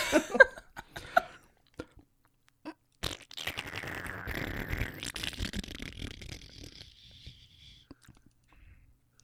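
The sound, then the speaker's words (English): A person imitates a fart with their mouth: a few short lip pops, then a long, buzzing, sputtering raspberry lasting several seconds that slides slightly downward in pitch and trails off quietly. “I needed the moisture because I believe the fart goes a little something like this.”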